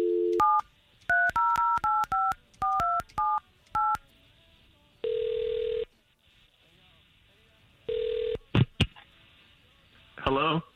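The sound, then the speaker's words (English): A quick run of about nine touch-tone beeps as a phone number is dialed by morning radio hosts in Central Florida, followed by two longer ringing tones on the line, all clear with no talking over them. “All right, let's make that phone call then.”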